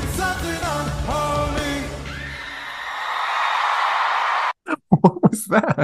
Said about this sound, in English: That was someone like screaming terror death.